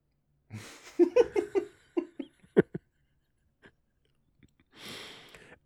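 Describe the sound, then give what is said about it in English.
A series of short, choppy throaty bursts of stifled laughter while gulping beer, then a few quiet clicks and a breathy exhale near the end. “Almost spit out my beer there.”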